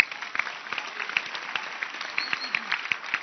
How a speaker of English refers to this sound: Even if they dragged you to church like a goat, because some of you are goats, it is still a great thing you have done to come to church. Can you clap your hands?